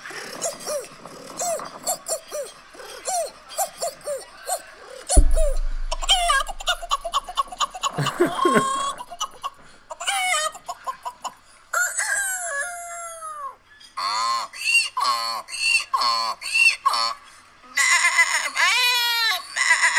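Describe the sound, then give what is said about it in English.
A man in South Africa mimics a string of animal calls with his mouth, a rooster-like crow, bleating and shrill warbling bird cries including seagull calls, delivered loud in quick succession with no talking. “And I'm going to make you a few animal sounds.”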